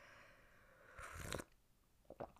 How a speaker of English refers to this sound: Because that's what people want to hear, is just slurping through a microphone. What's the opposite of ASMR, you know? It's because I'm doing this pod in the morning.